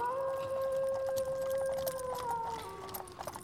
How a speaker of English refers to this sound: A wolf began to howl somewhere far down the road.